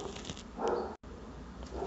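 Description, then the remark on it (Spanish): A dog named Luna barks once, a short muffled yelp, set against a low steady background hiss with no voices. “Disculparán ustedes, Luna se puso de loca a ladrar.”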